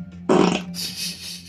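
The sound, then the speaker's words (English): A loud, wet, squishy fart bursts out for about a third of a second with a rough, sputtering low rumble, then trails off into a soft hiss with no talking. “Jeez, that was wet and squishy.”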